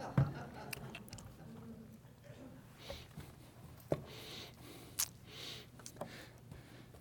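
Quiet sipping and swallowing of lemon water, soft wet mouth sounds with a few small clicks and gulps spaced out over several seconds, with no talking.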